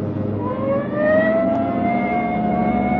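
police car siren wailing

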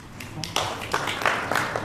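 polite golf-style applause

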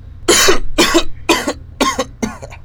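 coughing

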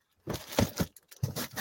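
paper being handled

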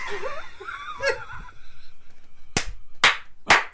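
applause

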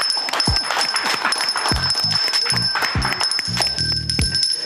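bell being rung

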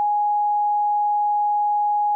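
censor beep tone

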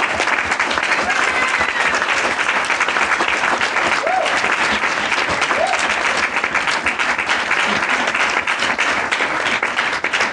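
audience clapping hands

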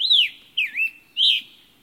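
songbirds chirping

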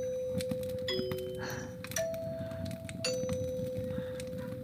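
doorbell ringing

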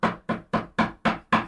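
knocking on a door

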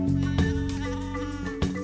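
sheep bleating

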